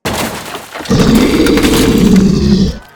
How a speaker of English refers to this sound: What made that roar?